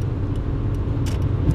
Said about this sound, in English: This car is riding my ass, and now they're passing me in the middle lane. Like, you go right ahead.